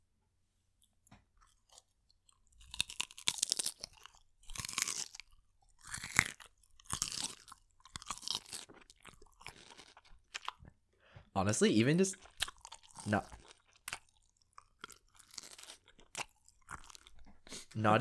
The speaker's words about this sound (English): finish eating his salad, so he figured he would just crunch it on the podcast, in case you like ASMR. Do you want to show the, or not show, but like, demonstrate to the listeners your crunch? Okay, let's do the crunch.